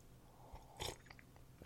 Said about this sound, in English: Sorry, I had to get a sip of some coffee.